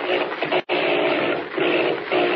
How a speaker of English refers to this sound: As our story continues today, the plane with its motor failing and Kent at the control searches desperately for a landing place in the great darkness below.